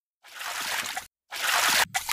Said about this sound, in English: Someone is walking in the water out there, and it's giving me the creeps.